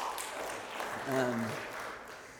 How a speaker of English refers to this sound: I'm thankful for our confirmation students who are here with us this morning. Let's give them a round of applause, why don't we?